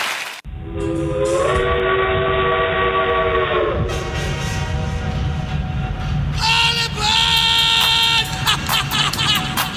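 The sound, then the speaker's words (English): A train rumbles past, its loud whistle blowing in long sustained blasts that shift pitch partway through, followed by a burst of shorter, sharper toots near the end. “All aboard. Give me pleasure. It's time for the train yard”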